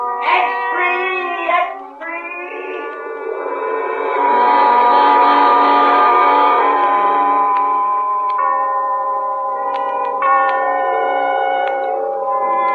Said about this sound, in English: The last train has left.